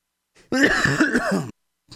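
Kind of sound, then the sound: human body sound, throat clearing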